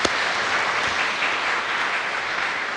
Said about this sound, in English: Can I just of all say, first of all, thank you to our youth group for singing for us. Let's give them a round of applause and say thanks ever so much.